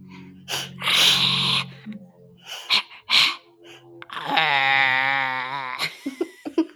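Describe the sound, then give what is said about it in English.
Two people make imitation bison noises with their voices: a string of breathy snorts and huffs, then a long, wavering, nasal moan, ending in short puffs of breath. “Okay, well, let's you and I both at the same time, let's make some bison noises.”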